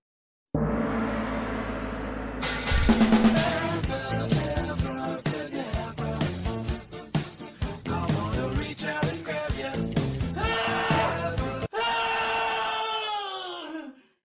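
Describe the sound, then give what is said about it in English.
A loud, dense remixed theme song kicks in after a short intro, looping a repeated chorus with harsh screaming layered over it, then ends on a drawn-out, falling wail. “we need to play this version of the This Song Sucks theme song”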